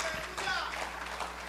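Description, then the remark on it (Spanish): A church audience applauds for God during a sermon, a dense, steady wash of clapping that holds an even level for the whole moment, with scattered voices and faint cheers mixed into the noise. “Regálenle un aplauso si usted quiere a Dios.”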